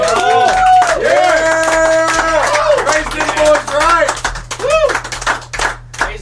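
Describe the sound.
A crowd applauds with dense, steady clapping, mixed with voices whooping and cheering in rising and falling tones throughout.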